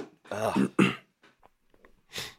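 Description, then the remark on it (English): Two gruff throat-clearing rasps in quick succession into a microphone, a few faint mouth clicks, then a short sharp sniff through the nose. No speech. “I'm trying to, like, avoid sniffing and doing all that in the microphone.”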